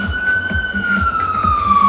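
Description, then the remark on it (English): A fire truck siren wails steadily as the truck passes, its tone gliding slowly downward, loud, with low engine and road rumble underneath and no talking. “There's a fire truck going by right now.”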